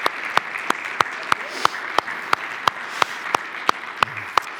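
An audience applauds to thank a team member for her three years with the ministry, in a steady wash of clapping, with sharp, evenly spaced claps cutting through at a regular beat for several seconds. No one speaks over it.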